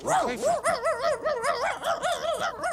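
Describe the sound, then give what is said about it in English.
A small dog yips and whimpers, a steady run of high, wavering whines rising and falling in quick succession for a few seconds, with no talking over it. “Get your paws off! Call the pound. We got a stray. The dog owes my friend money.”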